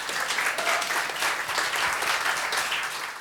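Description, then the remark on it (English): Sustained audience applause for the poets at an evening event. A dense, steady patter of many hands clapping holds an even loudness for a few seconds, with no voices standing out. “A big round of applause for our poets this evening.”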